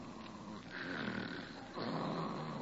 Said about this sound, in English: Holy smoke, she snores. Oh, no, no, she never told me about this. With a whistle yet.